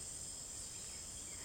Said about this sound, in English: Before long, you start to hear little chirrup sounds of crickets.